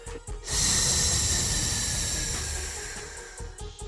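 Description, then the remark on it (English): A woman pointing at a door lets out a loud, drawn-out hiss, breathy and airy, starting abruptly and holding steady for about three seconds before tapering off. Nobody speaks. “The backgammon woman smiles and then turns to a door at their side, points, and lets out a loud hiss.”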